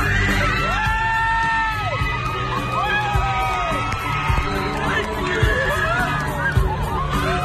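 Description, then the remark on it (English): A loud concert crowd shrieks and cheers continuously, with high, wavering screams rising over a dense roar of voices, sustained for several seconds. “I didn't even hear him singing. I just heard screaming.”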